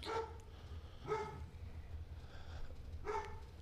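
A dog barks three times, two sharp barks close together and a third after a pause, moderately loud over a steady low rumble, with no one talking.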